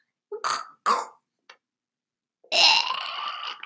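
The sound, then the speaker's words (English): A person vocally imitates a cat hacking up a hairball: two sharp, harsh coughing heaves, a tiny click, then a long, strained gagging retch, close and fairly loud. “After that hairball, it's all over.”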